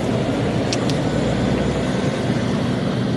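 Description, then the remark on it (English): A steady, heavy engine rumble fills the scene as lorries roll out of the depot of a large logistics company, a continuous low drone with a couple of brief higher clinks near the start and no voices. “A few kilometres away from the Ferme du Puy, at a large logistics company called Valet Transport, Lorries rumble out of the depot while, not far away, sheep nibble peacefully on the spring grass and flowers.”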